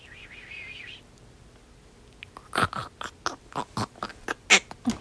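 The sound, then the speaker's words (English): A series of sharp, irregular crunching bites and small rustling movements, about a dozen quick snaps over a few seconds, preceded by a faint warbling tone and quiet background. Heard inside the parents' closet, where hamster food was put on the floor. “And they hear some crunching and some little movements and they think it's coming from the parents' garbage can inside their closet.”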